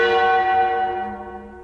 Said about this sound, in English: The bells, Master, the bells!